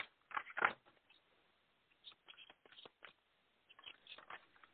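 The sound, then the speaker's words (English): A deck of cards being shuffled during a card reading for the full moon in Libra, with quick papery riffles and soft slaps in irregular bursts, a louder flurry at the start, then lighter shuffling with short pauses. “One more shuffle.”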